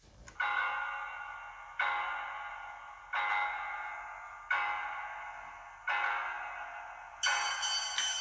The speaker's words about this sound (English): It's my ringtone, bro. Yeah, I thought you played the regular Halloween.